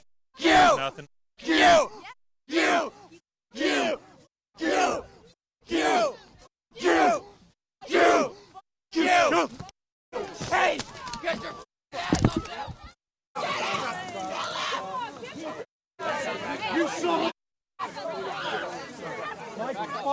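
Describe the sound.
A crowd shouts in a loud, rhythmic chant of about a dozen sharp bursts, then breaks into a sustained, noisy roar of yelling voices with brief gaps.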